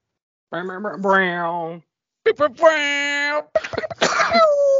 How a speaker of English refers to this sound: I'm coughing already in my intro.